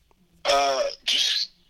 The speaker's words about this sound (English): Yeah, I might cough like twice or so.